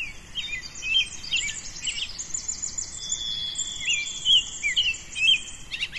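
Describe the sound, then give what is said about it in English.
At dawn, around 6:16 AM, many birds along a forest trail sing and chirp at once in a dense, overlapping chorus as they wake up, with bright trills and whistles layered over a soft constant hiss of insects and woodland ambience. “And really, like, you can hear how lively all the bird song is right now.”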